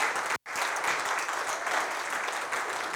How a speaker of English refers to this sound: Let's just give him a round of applause as he comes up and tells us a little bit about himself.